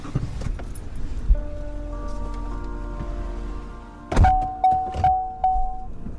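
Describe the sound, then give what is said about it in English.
Someone climbs back into a truck at sunrise: a soft thunk and rustling over a low idling hum, then a loud door slam, followed by a few faint repeated beeps or thuds. “The sun's coming up as we get back in the truck and head south.”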